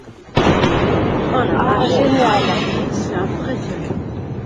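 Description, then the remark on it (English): A sudden, loud sonic boom from a supersonic aircraft cracks out after a brief quiet moment, followed by a long rolling rumble that lingers and slowly fades over several seconds. “Next, a new idea for making sonic booms quieter.”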